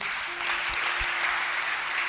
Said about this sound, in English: All right. Are you blessed? Okay. Clap for Jesus.